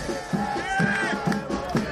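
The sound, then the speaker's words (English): A large crowd of soccer fans at a Chicago Fire game chants together in a sustained, sing-song roar, with steady thumping beats landing about twice a second beneath the massed voices. “And for the past 20 years, soccer fans have chanted it at Chicago Fire games.”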